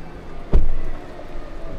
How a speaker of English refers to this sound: So we're standing by the side of the river looking up at the bridge. The sun is shining, there's a couple of boats moored up, people sitting on benches enjoying the sunshine.